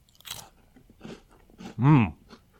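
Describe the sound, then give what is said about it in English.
Crisp crunching as someone bites into fire-roasted Vegetable Thins crackers with a red pepper hummus flavor, several sharp bursts spaced out over a couple of seconds, with a short hummed vocal sound in the middle. “So I'm gonna crack into them now, and let's see how these compare to what I grew up with.”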